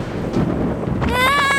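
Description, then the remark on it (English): A deep, loud rumble of thunder, the roar of the Thunder Monster in a children's story, rolls steadily for a second or so, then a higher, wavering cry-like tone rises over it near the end. “The Thunder Monster started to roar again.”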